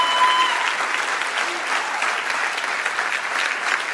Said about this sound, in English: I respect and I applaud you now in Jesus' name.